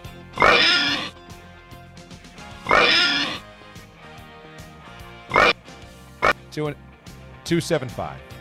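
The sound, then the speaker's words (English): A pig oinks and squeals in about six loud bursts. Two long grunts come first, then a quicker run of shorter squeals near the end. “Okay, so …, give me the oinks.”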